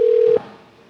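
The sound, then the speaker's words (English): One short telephone keypad tone beeps loud, a steady pitch lasting about a third of a second, as 0 is pressed on a pharmacy's automated phone menu, then cuts off into faint line hiss. “If you require personal assistance, slow the fuck down. Press 0.”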